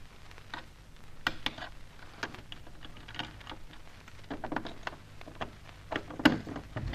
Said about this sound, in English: Now, hold your breath. I'm going to try one of Charlie Austin's keys on this door.